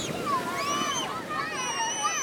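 Steady rushing surf washes along a Hawaiian beach an hour from the burn zone, with bright, excited voices of children jumping and swimming in the waves, calling and shouting over the continuous roar, a few feet from two giant Hawaiian green sea turtles.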